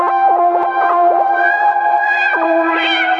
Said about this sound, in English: Which means you can actually play quite articulate lines, which you can't do on a lot of the other synth ones, and that reverb, and you know, there's still plenty of effects in there and what have you.